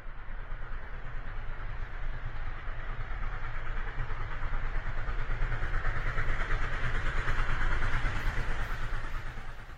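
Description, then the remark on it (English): A train pulling out of a station rumbles steadily with a deep, continuous mechanical roar that swells gradually as it gets under way, then eases off slightly at the end. No voices are heard. “The guard waved his welcome flag, the engine driver whistled in cheerful response, and the train moved out of the station.”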